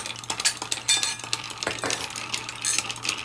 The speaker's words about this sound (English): Ice in the mixing glass. Alrighty, this is a stirred cocktail, so give it a stir for a while